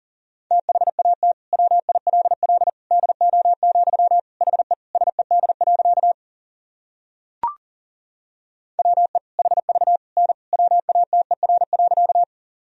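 Rapid Morse code at around 40 words per minute sending sentences built from common words and abbreviations: a steady mid-pitched tone keyed in quick dots and dashes, in two long runs split by a short pause with a single click.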